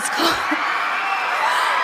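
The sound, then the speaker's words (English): A crowd at the Grammy Awards cheers loudly after a singer announces a new album is coming: a dense, steady roar of many voices with high whoops and yells rising above it near the start, holding at full volume throughout. “And then announced that there's another one coming and made the crowd go wild.”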